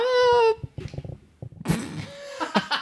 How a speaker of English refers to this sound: Lupin just meowed. He's like, yes, they can. I love how he just opens his mouth. It just makes no sound.